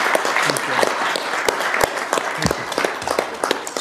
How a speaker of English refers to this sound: Now, therefore, we declare the month of June as Gay Pride Month in support of our LGBTQ plus community. Terrific. Applause. Thank you, Mayor.